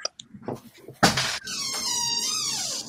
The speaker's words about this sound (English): And a door opens in a creepy fashion.